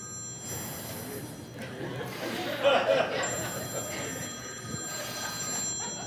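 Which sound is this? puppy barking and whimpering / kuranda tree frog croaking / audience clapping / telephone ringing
telephone ringing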